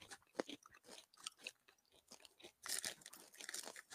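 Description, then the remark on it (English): Crunching of a crisp chocolate snack being chewed, with repeated sharp, irregular bites and crackles over about four seconds, no talking. “This one's really crunchy.”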